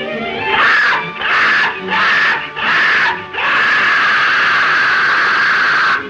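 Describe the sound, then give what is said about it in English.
In a film, the death bird screeches harshly and loudly at two people camped on a shore: four short, rasping bursts in quick succession, then one long, sustained shriek that holds steady to the end. No one speaks. “And So the two camp on the shore, and the death bird then accosts them with its annoyingness.”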